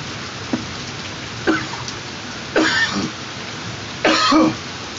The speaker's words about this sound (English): Boy, I see the thunder and the lightning out this mother. We live though in it, you know what I mean? We in it, in the trenches. Y'all hear it? Y'all hear it?